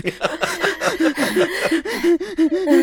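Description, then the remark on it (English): A voice imitates heavy, rapid panting, a quick string of breathy, voiced huffs that runs steadily for about three seconds with no words, portraying the character Bernie panting while riding in the back of Carlton's basket. “only to look back and see Bernie, for reasons you don't understand, panting in the back of Carlton's basket, despite the fact that she is riding in the basket.”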